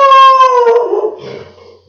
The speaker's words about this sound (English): Hey, my dog's barking at something. Yeah, cool. He's a great alarm system.